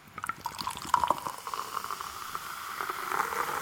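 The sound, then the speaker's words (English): A bottle of fizzy cider with apple brandy, triple sec and sherry being opened and poured, with a steady hiss and lots of tiny crackling pops from bubbles that continue throughout, no voices. “Right, let's open this one.”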